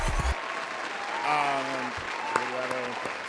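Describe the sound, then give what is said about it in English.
Steady applause fills the whole stretch, a dense crackle of clapping from a small group, with a couple of brief sustained vocal tones rising over it partway through. “We'll give it an applause because it was super fun.”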